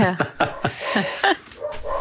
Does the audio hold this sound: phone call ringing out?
no